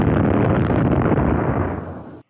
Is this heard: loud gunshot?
yes